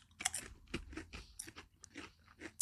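Salt and vinegar crisps being crunched, a rapid series of sharp, crackly bites and chews, bright and brittle, repeating irregularly at a moderate level with no talking.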